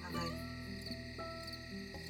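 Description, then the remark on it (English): Crickets chirp in a field in a steady, continuous high trill throughout, fairly faint, with a low tonal hum and some murmuring sound in the background. “This time of year, I mean, there are bugs, but they're what you hear at... right now, mostly are crickets chirping.”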